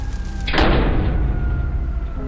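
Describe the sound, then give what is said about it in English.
A single loud door slam lands suddenly, followed by a low, booming rumble that lingers and fades slowly, with no voices. “And you can prevent that fire from spreading and harming others. Close the door.”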